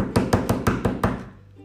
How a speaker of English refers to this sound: He starts banging on the window. Maybe he'll hear him.